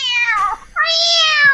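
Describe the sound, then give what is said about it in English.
Cats yowling in a fight: two loud, drawn-out, wailing cries, the second rising sharply after a brief gap, with no voices present. “because we had to do, like, they'd say, all right, we want 3 seconds of cats fighting.”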